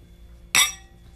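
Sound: glasses clinking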